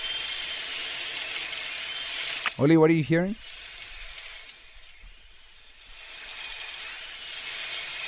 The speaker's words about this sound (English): Like, you know that irritating sound where someone is like screeching on the floor, like just like okay, scratching the surface type of. All right, so that's a dentist drill. Oh. Yeah, it's a dentist drill.